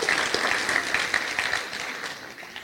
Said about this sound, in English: Okay, so we've got lots of round of applause for the nations, guys.